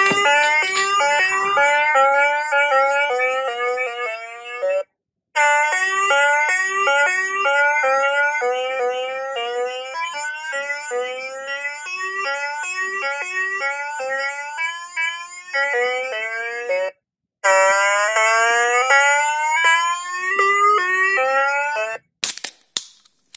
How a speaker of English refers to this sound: I think my version of the pop-up book hasn't ever had the batteries changed. It sounds like the stuff of nightmares. So I'll play that now.